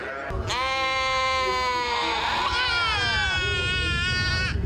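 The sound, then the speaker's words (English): A sheep at the Gore Place Sheep Shearing Festival lets out one long, loud bleat, its wavering, quavering cry held for several seconds over a low rumble of background noise. “The Gore Place Sheep Shearing Festival has been a symbol of spring for guests of all ages, and the fun continues to be a tradition for families.”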